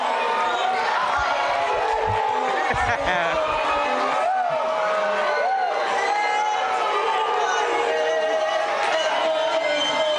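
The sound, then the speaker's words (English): A loud, dense audience at the Apollo roars continuously in disapproval, booing a performer who was singing, with shouts and whoops rising over a constant wall of voices for the whole stretch. “This is just an example of what happens when you get booed at the Apollo.”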